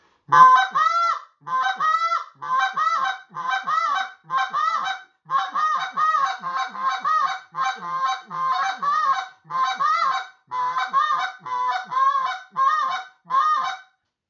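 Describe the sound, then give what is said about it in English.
A goose call is blown in a steady rhythmic sequence, alternating short clucks with drawn-out moans, roughly fifteen loud honking notes imitating a goose, with no talking. “We learned to cluck, and we're going to add that moan, and then shorten it, and then cluck, moan, cluck, moan.”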